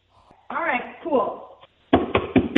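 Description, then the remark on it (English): A loud voice calls out, then a man bangs on the door of a woman's house in a burst of four or five heavy, rapid, forceful bangs in an uneven rhythm. “she can hear him banging on her door”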